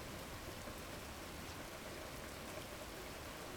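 Steady rain pours down on a stormy night in a dense, unbroken hiss, with faint patters of drops hitting a surface throughout. No voices, just the constant wash of a storm's downpour.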